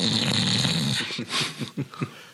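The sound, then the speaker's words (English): A 15-year-old Scottish Terrier snoring right next to the speaker at the Go Power Cat Home Studio: one long, raspy, wheezing breath followed by a quick run of short snuffling snorts, heard on its own with no talking. “I have a dog snoring right next to me.”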